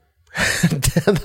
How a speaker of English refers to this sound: I think by you resisting the yawn, you made an uglier face. You should have just yawned. If you would have just yawned like a normal person, like, I would have recognized what kind of face that was.